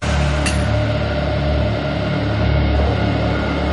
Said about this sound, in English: Hey, you want to hear a song? Okay.